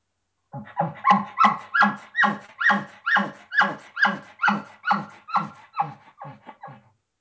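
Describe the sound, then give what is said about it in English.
A mouth-blown game call sounds a steady run of about fourteen quick, whiny, yelping notes, each pulled back with an inhaled tail made by breathing back in through the call, fairly loud with no talking, resembling a distressed dog. “You're not blowing out. You're sucking back exactly.”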